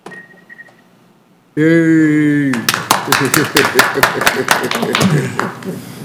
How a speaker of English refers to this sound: So I think everybody deserves a round of applause all around.